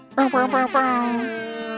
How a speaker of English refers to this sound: Air horns for her.